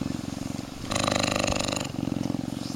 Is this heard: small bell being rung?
no